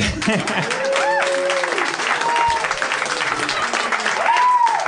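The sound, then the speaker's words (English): A crowd bursts into sustained applause and cheering in an audience vote for crunchy peanut butter, dense clapping with several voices whooping and shouting above it, steady and loud throughout. “A round of applause.”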